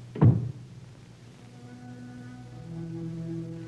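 A door shuts with a single heavy, muffled thud as a man walks out of a room, followed by a quiet, steady low hum with faint sustained tones underneath.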